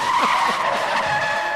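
A loud, sustained screech of car brakes and skidding tires, a shrill whine that holds steady for about a second and a half with no talking.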